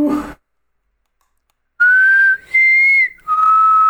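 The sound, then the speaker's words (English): After a brief voice and a pause, someone whistles a short, clear four-note tune of sustained notes, rising then dropping lower, fairly loud. “Can you do the Hunger Games whistle? Remind me how that goes.”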